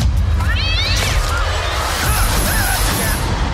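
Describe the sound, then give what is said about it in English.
A cat meows, a rising, wavering cry followed a moment later by a second shorter meow, both fairly clear over a steady low rumbling background. “Hello, kitty kitty.”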